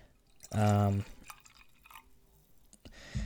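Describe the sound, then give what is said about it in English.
A bottle of whiskey is uncorked and a little is poured out: a loud squeaky burst near the start, then a soft, brief trickle with faint dripping. Quiet overall, with no talking. “I'm gonna uncork it now. We're gonna pour a little bit out.”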